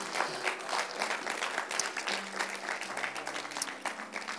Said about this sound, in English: Let's give the word of God a hand clap of praise. Thank you, Lord.